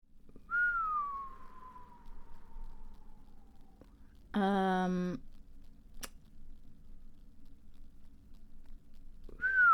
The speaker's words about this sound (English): The double whistle.